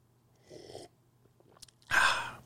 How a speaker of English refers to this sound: So if I make something, let's say I have this coffee cup in front of me. I'm going to have a sip, as a matter of fact.